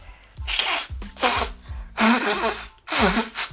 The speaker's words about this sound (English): Please hold on. I gotta blow my nose.